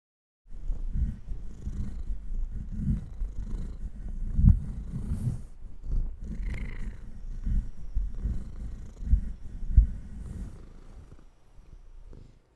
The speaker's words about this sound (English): My cat is very excited to see me this morning, so I figured just let him purr into the microphone a few times.